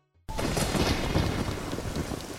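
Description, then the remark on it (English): A storm in Kakariko Village in a video game bursts in after a brief silence: steady, loud rain hisses across everything while deep thunder rumbles underneath, continuous, with no voices. “After completing both the Forest, Fire, and Water Temple, Link can enter Kakariko Village to find a storm raging in town.”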